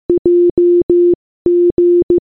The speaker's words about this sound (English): Trying to turn it on, you hear this. Morse code. Yeah. Can we have it again, please? Did anybody manage to note that down? No, I don't know Morse code.